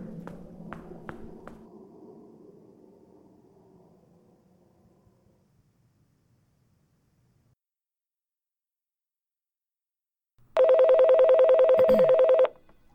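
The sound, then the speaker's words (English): A few quick clicks and tones of a phone being dialed to call Superstition Public Library fade into a long hush, then a single loud, steady ring buzzes on the line for about two seconds. No one speaks. “You have to make a phone call? Now?”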